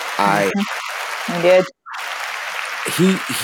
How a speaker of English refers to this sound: You know, Sean, that's a round of applause for you, man.